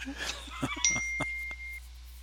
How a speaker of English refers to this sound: Sorry, Chrissy's texting me. It's probably dinging through.